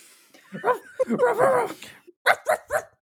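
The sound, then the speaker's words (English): Actor Anthony Anderson imitates a dog, starting with whiny, yelping sounds and ending in three sharp, loud barks in quick succession. “And Anthony Anderson's bark, iconic.”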